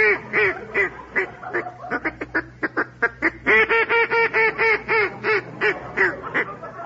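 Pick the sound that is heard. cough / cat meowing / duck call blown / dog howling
duck call blown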